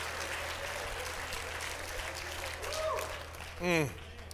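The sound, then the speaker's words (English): An audience at the Life Church claps hands together in praise to the Lord in a steady, dense wash of applause that lasts throughout, with a voice calling out briefly near the end. “Oh, let's all clap our hands unto the Lord.”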